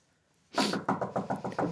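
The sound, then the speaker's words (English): A quick run of sharp knocks on wood, about seven raps in rapid, steady succession, loud, with no voices. “I mean, I'm going to have to knock on wood as I say this, but it's been a while since I've had any sort of major injury.”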